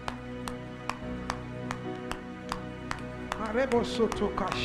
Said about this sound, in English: I didn't remember telling you to stop clapping.